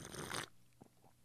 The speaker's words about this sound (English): Ah, that's delicious. How's that tea slurping sound, everybody, tonight?